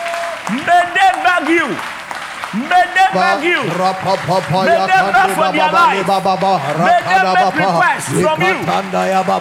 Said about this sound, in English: Clap it and pray. May they beg you.